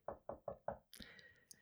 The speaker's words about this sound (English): So so it starts off with Shirley knocking at the door.